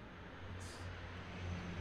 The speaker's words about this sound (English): Wait for that plane to come through.